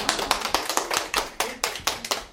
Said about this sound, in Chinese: 我们要不要给这次的 Open Mic 来一轮掌声？ 来来来来来！